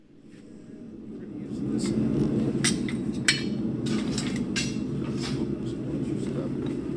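A blacksmith hammers iron in his shop, turning an ordinary railroad spike into a bottle opener: sharp, irregular metallic strikes over a steady low roar, with faint muttering underneath.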